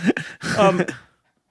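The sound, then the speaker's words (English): A dog named Arthur, worked up and excited, pants in quick, breathy bursts, then lets out a short, high whimper before falling quiet. “He'll sit next to you. And he's a little worked up.”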